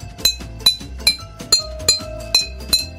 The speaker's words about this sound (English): So sometimes you have this huge orchestra and sometimes it'll just be you banging a water bottle with a stick.